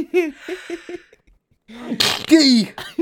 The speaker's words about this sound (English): For the next 20 minutes, you're just going to keep hearing me sneeze. Hold on. Bless you.